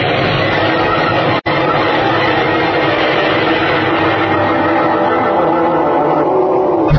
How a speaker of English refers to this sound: Faster and faster, with great grinding, shattering rumbles, the huge gash in Utopia's surface widened further and still further. Then as I hurtled into space, the bulk of the planet tore completely away